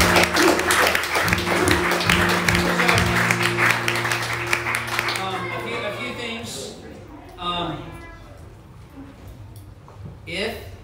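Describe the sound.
An audience applauds in a dense, steady burst of clapping over sustained keyboard chords for about five seconds, then the clapping fades and a voice talks quietly over the lingering music.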